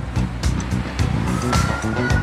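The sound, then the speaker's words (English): Busy street traffic, with a steady rumble of engines, sharp bursts of road noise, and a faint rising tonal whine passing through, with no voices. “So if you need to hear people talking or you're out running and you still need to hear traffic and horns, all that sort of thing.”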